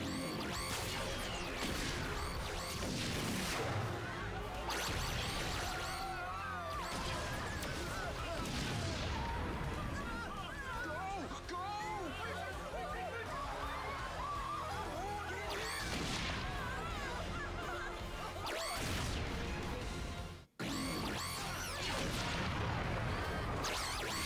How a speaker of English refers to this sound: They really like to run from big explosions in these costumes. Happened at the end of Megaforce, too.